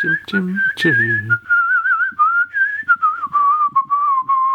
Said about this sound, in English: I mean, do you usually whistle or hum to yourself? Will this be going into the playlist of whistles? Probably, yeah.